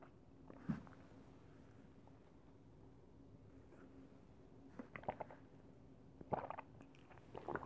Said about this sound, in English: Pardon, I had to take a sip.